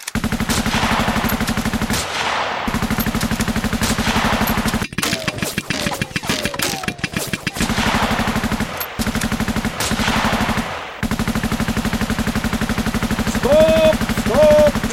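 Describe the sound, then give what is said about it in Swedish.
Loud, rapid rifle gunfire cracks off in dense, sustained bursts for the whole stretch, with a few brief gaps, over a steady low rumble, as shooters fire at a running moose. No one speaks. “Skjut för bövelen! Skjut!”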